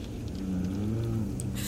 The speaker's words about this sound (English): What was that? Oh my God. A polar bear. They come in this far from the coast? They can, though it may not be common.